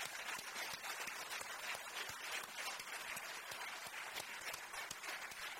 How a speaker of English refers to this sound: All right. Well, let's give our graduates one final applause.